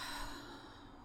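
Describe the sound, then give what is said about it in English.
A single soft, steady nasal inhale, airy and hissy, taken during a guided breathing and relaxation practice, with no talking around it. “Inhale and relax.”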